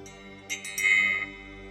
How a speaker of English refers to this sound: To ring our bell.